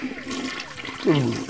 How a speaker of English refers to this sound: Flush.